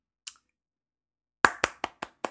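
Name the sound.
clapping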